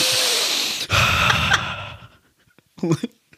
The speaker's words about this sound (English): Sniffing all into this microphone.